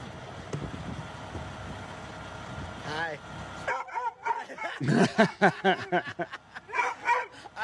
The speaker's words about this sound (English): Worse news, Chopper the dog is going to give you an earful about it. Let's take a look. When I take too long at the stop, Chopper yells at me.